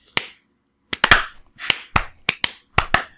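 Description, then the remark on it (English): A scattered series of sharp, loud hand claps, about ten of them in irregular bursts and overlapping pairs, meant to mimic the smack of spanking, with no talking. “Should we all clap and it'll sound like spanking?”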